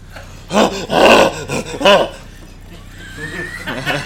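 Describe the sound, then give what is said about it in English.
Guttural, gorilla-like retching and vomiting: three loud, rough heaving bursts in quick succession, then a quieter stretch with a faint rising whine and a softer final gag. “You probably hear some gorilla-esque retching.”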